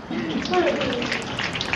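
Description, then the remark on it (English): Dense, continuous crowd applause at an assembly, heard over a poor PA system, thin and distorted like patter of rain, with a muffled voice faintly audible underneath. “That sounds like rain on a concrete.”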